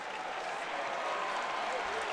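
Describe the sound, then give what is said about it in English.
A sellout crowd, guessed at 11,000 people, at a Baylor basketball game in the Farrell Center roars and cheers in a steady, dense wash of noise. It holds at an even level for the whole stretch, with no single voice standing out. “That's a guess on the attendance, but it's a sellout crowd, and this thing is rocking.”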